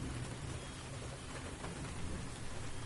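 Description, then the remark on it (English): Steady rain falls on fields in Montana in the morning, in a dense, even hiss, with a low rumble underneath suggesting thunder. No voices, just continuous outdoor downpour at moderate loudness. “So we're going to have a morning where we look out onto the rainy fields.”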